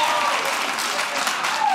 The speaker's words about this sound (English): Thank you for clapping for my panties.